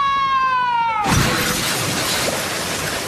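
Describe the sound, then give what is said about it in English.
A falling whistle-like tone gives way to a loud crash of a boat's glass bottom shattering, followed by a couple of seconds of bright, noisy crackling and tinkling debris. “but I'm a little bit worried about the glass bottom.”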